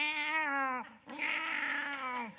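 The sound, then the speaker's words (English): A lion cub's roar, like the little lion in The Lion King roaring as the bad guys come: two drawn-out, high-pitched cries, the first about a second long and the second longer after a short gap, loud with no talking. “You remember in The Lion King when the little lion is like, he's getting into it with the bad guys are coming, he starts roaring.”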